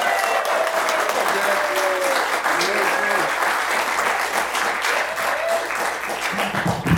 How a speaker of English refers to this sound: So please give a big, gigantic, and I mean big, Joy Cinema round of applause for Geek Brother number one himself,